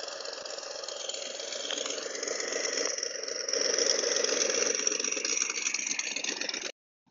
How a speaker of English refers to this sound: That sound clip was just amazing because the 409 Chevy engine will always sound amazing no matter what.